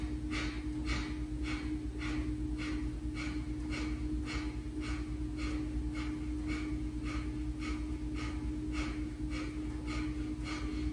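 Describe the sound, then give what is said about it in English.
A long run of rapid, forceful exhales through the nose during a skull shining breath exercise, about two per second in a steady rhythm, fairly loud over a constant low hum, with no talking. “Breathing in. And exhale, exhale, exhale, exhale.”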